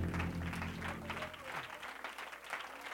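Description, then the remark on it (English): A church audience claps their hands unto the Lord in a dense, steady burst of applause, loud throughout, with a low sustained organ-like tone underneath that fades away partway through. “Would you clap your hands unto the Lord one more time?”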